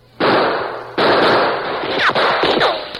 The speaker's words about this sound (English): Answer those shots, Tonto. Keep them at that window.